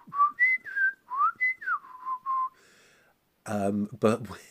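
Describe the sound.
A penny whistle toots a string of short, gliding notes with the rise and fall of speech, voicing a Clangers puppet character, clear, followed by a brief burst of a person's voice.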